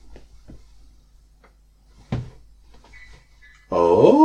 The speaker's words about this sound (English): Oh. Is it the springs in the chair? It must be a sound. Is that the noise you were hearing before? I think so. Yeah. I was like, well, stop moving then.